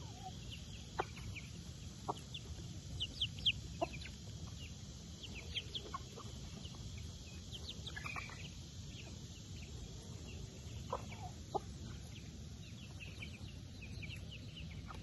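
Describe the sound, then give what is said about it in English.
Several chickens cluck in short, scattered bursts over a steady low outdoor rumble as they are being fed, their calls overlapping irregularly. “Where's my birds at? There they are. There's my birds.”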